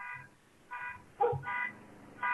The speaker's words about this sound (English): It's like GTA in the background. And she's just like sat there. There's a car, like a car alarm going off.